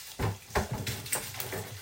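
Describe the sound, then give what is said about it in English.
Pancetta sizzling in a frying pan while cooking a Hungarian dish: a steady hissing fry broken by irregular sharp crackles and pops, fairly loud, with no one speaking. “You can obviously hear the sizzling in the pan.”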